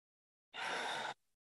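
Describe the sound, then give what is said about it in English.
A single audible ujjayi throat breath, a steady airy rush lasting about half a second with a soft hissing tail, fairly quiet, with no talking. “Let's return to your Ujjayi breath.”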